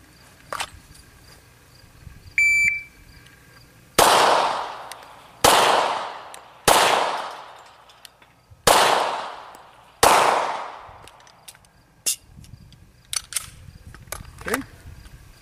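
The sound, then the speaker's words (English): A short electronic beep from a shot timer, then five sharp gunshots from a freshly loaded 5 rounds for a practical accuracy section, fired at a steady, unhurried pace about a second and a half apart (7.66 seconds total, 1.36-second average split), each with a loud crack and a ringing echo tail. “Now I've just reloaded with 5 rounds. Next I'm going to shoot section D, the practical accuracy.”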